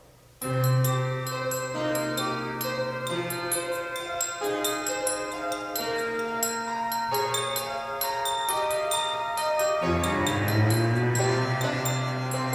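Bright, bell-like glass clinks, made by a musician clinking glasses, tap out a steady rhythm over sustained, heavily reverberant piano chords played by another musician, the clinks ringing crisply on top of a washy musical bed.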